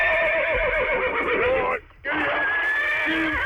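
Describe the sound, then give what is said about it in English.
A horse neighs loudly: a long, quavering whinny, a brief pause, then a second drawn-out neigh. “Hang on, just let me bring in this actual horse.”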